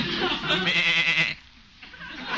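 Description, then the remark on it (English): A single sheep being clipped bleats loudly for over a second, a wavering, nasal cry with strong harmonics that breaks off abruptly, followed by a quieter stretch and a faint lingering tail. “Well, that sheep can wait.”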